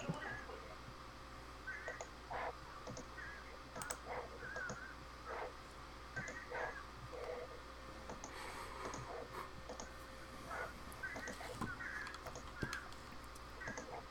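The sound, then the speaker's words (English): Birds squawking repeatedly in the distance, a scattered run of short harsh calls over a steady low background hum, fairly faint throughout with no voices. “Oh, you know, there are birds squawking outside.”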